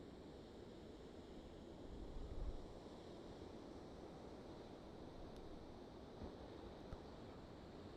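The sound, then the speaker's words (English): Ocean waves roll in at night under moonlight with a steady, hissing wash, one gentle surge swelling briefly before settling back into the continuous surf. No one speaks. “Tonight, I'm sitting overlooking the ocean with the moon behind me, illuminating the waves as they roll in.”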